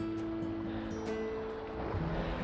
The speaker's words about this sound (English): So can you hear the waves? It's really quite calm down here today.